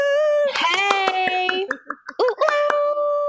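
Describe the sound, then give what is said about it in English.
A quick run of sharp hand claps, loud and slightly uneven in rhythm, mixed with a high, drawn-out whooping voice cheering over them, welcoming guest Anjelah Johnson to the show. “This is me clapping.”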